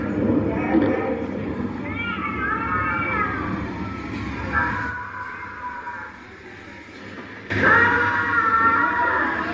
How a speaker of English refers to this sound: So she's walking through, she's playing the screams of animals. At McDonald's.